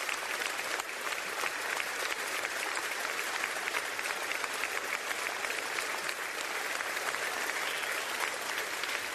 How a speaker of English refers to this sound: This is applause for the Capitol Police. It was a standing ovation.